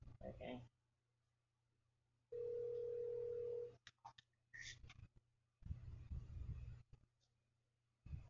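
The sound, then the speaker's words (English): A steady, fairly loud telephone dial tone from an outgoing call holds for about a second and a half, set between bursts of muffled rustling, handling noise and sharp clicks. “Are you calling my phone?”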